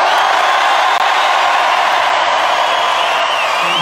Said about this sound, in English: Just as you're all filming this, if you could just all come to three and just give me the biggest cheer you possibly can, just so I can remember it forever, and then just all tag me on Instagram. Starship, yes, 1, 2, 3, cheer!